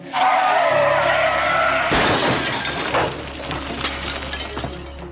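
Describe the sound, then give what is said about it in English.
A car's tires screech in a loud, sustained skid as it swerves to miss a deer, then a sudden violent crash into a utility pole, breaking it in half, with shattering glass and splintering debris that clatters and settles over a few seconds, no voices present. “Scared and out of control, you try to control the car but continue into the ditch to miss it and strike a utility pole, breaking it in half, causing the airbags to deploy and leaving you in a daze.”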